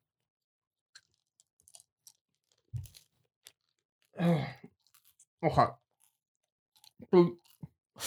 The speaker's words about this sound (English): 我们在咬口香糖。